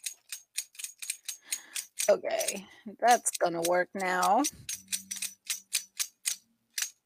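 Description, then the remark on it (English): Small jingle bells shaken in short, bright, evenly spaced bursts, tapping out the rhythm of Jingle Bells. Someone speaks briefly over the middle of it while the jingling continues. “I could sing Jingle Bells, but I'm not going to, because that would be way too entertaining. I'll just do the bells.”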